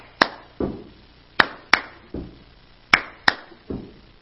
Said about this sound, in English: I could give you the music of the world right now, and it is a what they call an offbeat, where you could clap twice and stomp your foot. And there's an actual song like this.